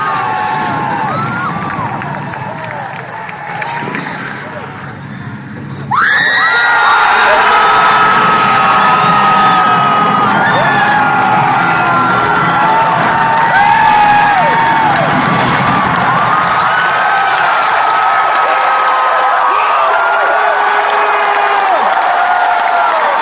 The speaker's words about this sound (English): This is what the crowd noise was like when Han and Chewie appeared on screen in the trailer. And brace your earbuds after you hear Harrison because it's going to get loud.